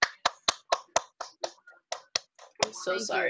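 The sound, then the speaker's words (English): A short round of applause celebrating finishing freshman year of college: about eleven sharp, evenly spaced claps in a quick steady rhythm, followed by a loud burst of excited voices. “Everybody, please give us a round of applause.”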